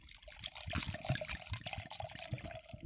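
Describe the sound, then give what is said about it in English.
Red wine, an Australian wine from the Barossa Valley, pours steadily into a glass for about three seconds, a continuous gurgling splash with soft bubbling pulses and no voices. “Can I pour you some red wine now?”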